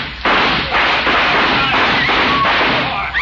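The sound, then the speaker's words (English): A rapid volley of loud gunshots fired into the air, several reports overlapping into a continuous roar of gunfire with sharp cracks and brief dips between bursts. “Shoot into the air.”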